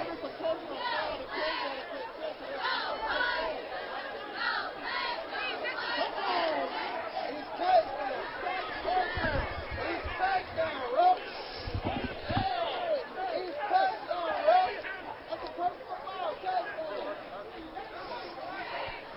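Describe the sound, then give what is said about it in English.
Football fans in a crowd yelling and jeering at the referees after penalties, a dense, continuous babble of many voices with louder shouted bursts rising out of it now and then, sustained for about twenty seconds. “Some of the fans yelling at the refs now.”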